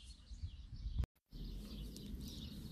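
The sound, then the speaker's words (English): Faint birdsong from birds in the trees twitters on and off above a low outdoor rumble on a nice day, with a brief moment of near silence partway through. No one speaks. “I don't know if you can hear the birds in the trees.”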